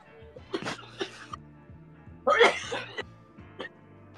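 Several harsh, raspy coughs from someone after smoking, coming in uneven bursts with one especially loud, rough hack in the middle, followed by a couple of smaller coughs.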